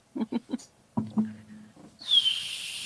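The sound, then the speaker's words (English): After a few short breathy puffs and a low hum, someone whistles one high, airy note that dips slightly in pitch and holds, wrapped in a rush of breath noise. “I can whistle.”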